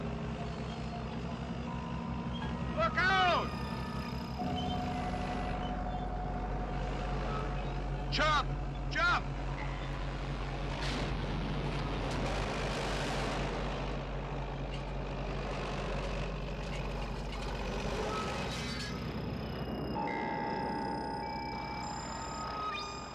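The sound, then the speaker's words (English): A heavy truck engine rumbles steadily, with high reversing beeps ringing out over it and a few sharp metallic squeals and bursts along the way. “You know, all that truck did was roll over, by the way, and it blew up into flames.”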